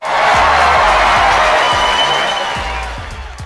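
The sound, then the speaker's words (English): A loud burst of audience applause mixed with cheering and whoops welcoming a guest, the founder and CEO of Resume Addict, sustained for a few seconds before gradually thinning out toward the end. “Clap for her, clap for her, clap for her.”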